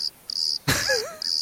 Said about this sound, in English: How many cricket sounds you got?